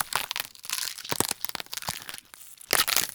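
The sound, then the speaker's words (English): Crisp, wet snapping and crunching of celery stalks being twisted and broken by sound designers as bone-breaking foley, a rapid series of sharp cracks and fibrous crackles with no talking. “Snapping celery and other crunchy vegetables are classic tools for these gory sounds.”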